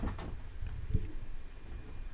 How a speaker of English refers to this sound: The door just closed, but I think it's like the wind outside.